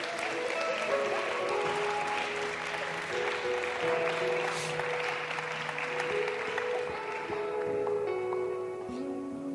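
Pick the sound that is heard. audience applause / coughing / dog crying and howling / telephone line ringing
audience applause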